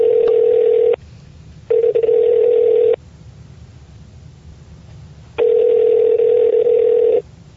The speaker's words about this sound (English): Why don't we dial her up? Okay.